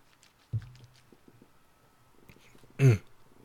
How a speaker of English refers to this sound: I just heard the water. I just heard him smack his lips and do all that. He licking his lips. He doing all this.